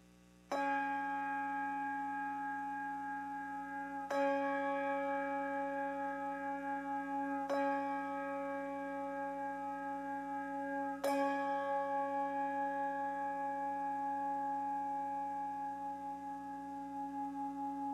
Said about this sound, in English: This was just an excuse to ring the bell. I've wanted to do that for some time. The bell called me to attention.